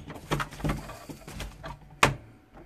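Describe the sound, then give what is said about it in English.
A studio door, blown by the wind, rattles and knocks a few times, then bangs loudly as it swings open, with a short fading rumble afterward. No one speaks. “sorry, the door opened there. The wind blew my studio door open.”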